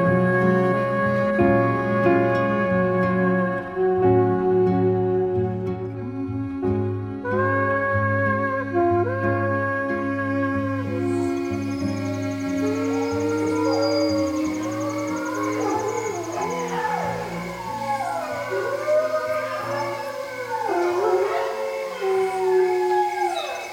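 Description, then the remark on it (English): A large pack of timber wolves and their pups howls together in a pine forest: long sustained howls overlapping with higher, wavering yips and cries from the pups, rising into a dense, echoing chorus in the second half. “The calls of a large pack of timber wolves and their pups echo through a pine forest.”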